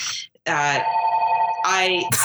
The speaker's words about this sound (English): oh, I'm sorry, my phones, I forgot about the phones.